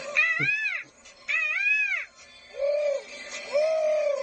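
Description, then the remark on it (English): A human voice imitates a morning bird call with four drawn-out, arching whooping notes, the first two high and wavering, the last two lower and fuller, heard alone without talk. “Do you have a morning bird call of any kind to share with us?”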